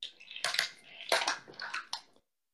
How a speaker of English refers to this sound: I just kicked the car. A little you toy what? Car. I just kicked a little toy car in my freaking...